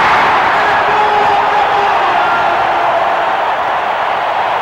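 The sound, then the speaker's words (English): A loud, sustained roar of a basketball arena crowd cheering, standing and waving their arms for Kareem Abdul-Jabbar to get the ball, a dense wash of voices and whoops holding steady for several seconds with no break. “Magic, look, it says to Kareem, come on down here, big fella, put in a chair, the crowd stands for Kareem to get the ball. Everybody's waving their arms.”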